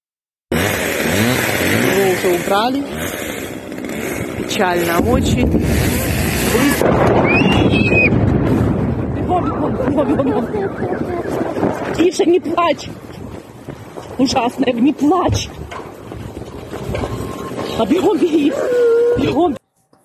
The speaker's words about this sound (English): I'm going to let you talk because it's hard for me as a mom to hear a little child crying and screaming like that. It's very, very difficult to listen to that